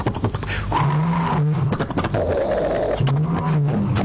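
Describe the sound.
A voice imitates a struggling Piper Cherokee propeller-plane engine sputtering from carburetor ice: a loud, continuous buzzing drone that wavers and lurches between pitches, stalling briefly twice before rumbling on again.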